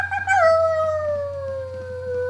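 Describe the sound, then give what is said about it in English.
A dog lets out a long, sustained howl that starts higher and slowly slides downward in pitch, loud, with a low steady hum underneath and no talking. “What the actual fuck are you howling for?”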